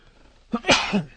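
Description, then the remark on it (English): A single sharp sneeze: a brief intake followed by a loud, breathy burst that trails off quickly, with no talking around it. “Anyway, I had a sneeze, so sleeka.”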